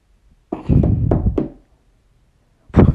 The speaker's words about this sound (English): Until I jolted awake. It was a knock at the door. Who would knock at the door at this time?